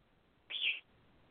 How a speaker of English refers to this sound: Bird, I hear you.